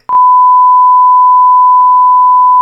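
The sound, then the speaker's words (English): A single loud, steady censor bleep covering a man's name: one unbroken high-pitched tone holding for over two seconds with no talking audible beneath it. “Just say his name, he'll block it.”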